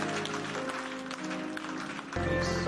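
An audience at the Keeper's House Chapel International in Madina Estate, Accra, gives Jesus a clap offering, clapping together in a dense, continuous burst of applause over steady sustained musical tones, which swell louder and fuller in the final half second.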